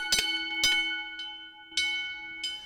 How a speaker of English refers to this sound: Well, with the foot pedal, that's what he would be operating his siren with, and that's the gong that would be scaring away the horses and scaring away the dogs and whatnot as they'd be flying down the street with the hooves just a trampling.